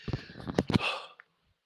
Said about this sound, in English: Oh, it's coming. Got another sneeze coming. It's coming. Can't talk.